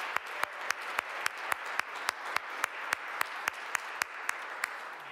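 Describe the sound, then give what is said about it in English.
A crowd applauds steadily in support of the members of the previous year's council, a dense hiss of many hands, with one sharp clapper standing out in a quick, even rhythm throughout. No one speaks. “Can we give them a round of applause and support?”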